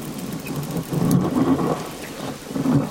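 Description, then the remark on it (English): Underwater recording by Chris Watson in Scotland's Moray Firth, full of low, rumbling roars of seals that swell and fade, with a sharp navigating click of blue-nosed dolphins near the middle and their brief faint whistles rising above the steady wash. “Not sure what it means, but that's the title of this underwater recording, featuring roaring seals and the distinctive navigating clicks and whistles of blue-nosed dolphins.”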